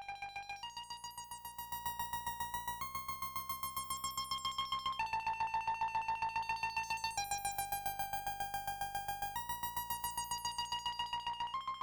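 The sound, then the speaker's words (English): A bright synthesizer holds sustained tones that step between a few pitches, shifting slightly in and out of tune, chopped by a sixteenth-note tremolo effect into a fast ticking pulse, with a swooping flange effect rising and falling through the sound. “The first uses a tremolo effect with 16th notes, which maybe sounds like a whacked out digital alarm clock rapidly ticking.”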